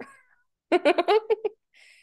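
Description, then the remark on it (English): A person imitates a cat's meow: a loud, drawn-out mewing call broken into several quick pulses, followed by a faint hiss-like tail and brief quiet. “What about meow. Meow.”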